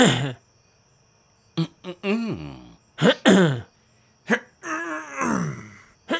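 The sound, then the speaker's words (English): A person clears their throat several times, making loud, exaggerated groaning vocal bursts separated by short pauses, with no actual speech. “Just clear my throat.”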